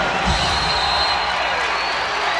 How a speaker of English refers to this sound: Crowd on its feet here at Murphy Center